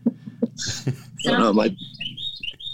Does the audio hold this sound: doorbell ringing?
no